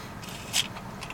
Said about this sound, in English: Did you get a broken straw? Did I? It looked like it, the way you slurped.